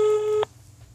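A telephone ringing tone on an outgoing call placed from a studio about the new Subaru Forester: one steady, mid-pitched electronic burst lasting about half a second, fairly loud, then cut off abruptly into near silence. No one speaks.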